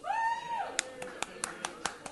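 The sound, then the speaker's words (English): A short vocal tone gives way to about seven sharp, evenly spaced claps from people voting for Daredevil season 2 at an awards night, a steady slow clapping rhythm lasting just over a second. “Oh, some actual clapping. People moved their hands together for that one.”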